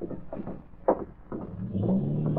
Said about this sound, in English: Jig, I hear a car starting outside. See whose car it is, Charlie.